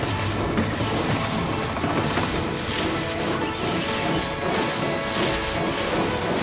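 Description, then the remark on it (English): A loud, steady mechanical clatter of a printing press engine, primed and loaded with paper, running with a dense, rhythmic churning and hissing that continues without pause and no voices. “Father, I think we're ready. Prime the engine.”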